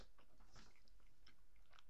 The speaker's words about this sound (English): I was chewing some of my burrito. I'm sorry.